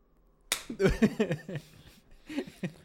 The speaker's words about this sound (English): Are we ready? Yeah. You want to do a clap? Yeah. Okay. Wait, do one more time.